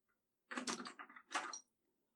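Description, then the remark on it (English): A door slides open with a scraping rumble that runs about a second, briefly dips, then surges again before stopping. No one speaks. “Is that the door? Is that the door? It's open now.”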